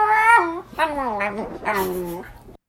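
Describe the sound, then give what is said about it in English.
A female pet dog makes a strange, almost speech-like vocal noise that she makes all the time: three loud, warbling tonal bursts that slide up and down in pitch, with no one talking over it. “Like, that's not a normal dog. Who sounds like that?”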